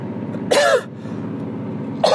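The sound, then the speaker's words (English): Two raspy coughs from a lingering chest cough, one at the start and another about a second and a half later, over a steady low hum in the background. “I still got the cough. This fucking cough lasts forever.”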